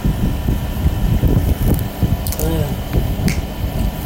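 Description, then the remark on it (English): A malfunctioning air conditioner drones with a steady, rough whir, broken by irregular rattles and clicks and a brief warbling squeal partway through. “What is wrong with my air conditioner?”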